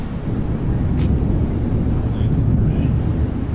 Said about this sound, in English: Here. That was the thunder.